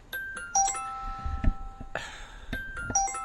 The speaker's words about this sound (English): Somebody's is that chiming on your end